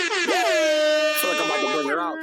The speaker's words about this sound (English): She's the air horns.